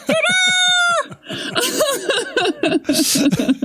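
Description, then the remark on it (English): A man's voice, Bill Murray off screen in a movie, imitates a rooster crowing, one loud, drawn-out call held for about a second, then breaks into rapid, animated vocalizing. “Like even just like that crow that Bill Murray does when he's off screen, just like candy bar, candy bar, gonna get a candy bar.”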